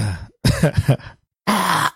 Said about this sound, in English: Busy clearing my throat every 5 seconds.